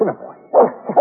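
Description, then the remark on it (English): A puppy lets out a quick series of high, sharp yips and barks, three bursts close together within about a second, fairly loud with no talking. “This pup really deserves the credit.”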